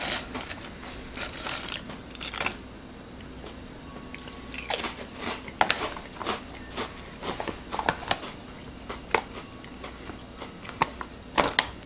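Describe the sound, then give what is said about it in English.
Loud crunching of pizza-flavored potato chips, with sharp irregular bites and chews repeating throughout and no talking. “Just get them because they're a decent chip. Crunchy.”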